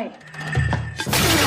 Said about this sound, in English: Just throw the freaking vase at them?